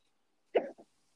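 An abrupt hiccup jolts out, followed a moment later by a smaller, softer catch of breath, with quiet around it and no talking.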